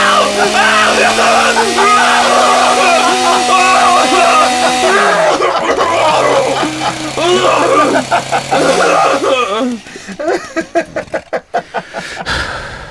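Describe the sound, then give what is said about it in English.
A real chainsaw engine drones loudly at a steady pitch, dropping and revving back up twice, with people shouting over it; then it cuts out, leaving scattered clicks and thumps. “You used a real chainsaw?”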